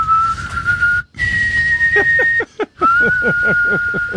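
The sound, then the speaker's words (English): A person whistles casually, a steady sustained tone broken by short rising chirps, with brief pauses between phrases and a low rumble of background noise underneath. “Nonchalant whistling.”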